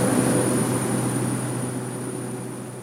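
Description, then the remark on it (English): A steady, loud engine drone with a sustained hum and a high whine above it, easing slightly in volume, as airplane engines turn on and run during takeoff on a flight to Kalaupapa on a hot day in June. “Okay, the engines are turning on.”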